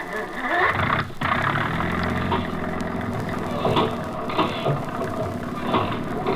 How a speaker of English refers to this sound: Start that engine.